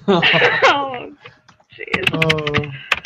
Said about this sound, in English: Who is typing? People are typing. Well, the dogs aren't typing, I hope.